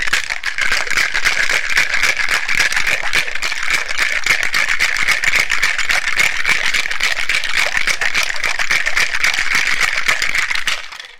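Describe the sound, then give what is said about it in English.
A cocktail shaker with ice is shaken vigorously and steadily in a kitchen for about ten seconds, ice clattering in a fast, even rhythm, loud, then stopping abruptly. No one speaks. “Pop the top on the shaker, and away we go.”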